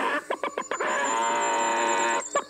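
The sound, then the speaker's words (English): A man imitates a chicken: a quick run of short clucks, then one long, drawn-out nasal squawk, ending with a few more clipped clucks. The voice is loud and there is no other talk. “I am having real trouble conversing with you, sir, if you're going to keep clucking.”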